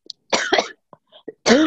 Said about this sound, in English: As I cough in the middle of my super flu discussion, the flu is coming.